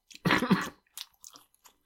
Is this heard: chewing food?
yes